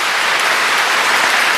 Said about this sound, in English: They clapped at a funeral for something she said that was taking a shot at somebody else.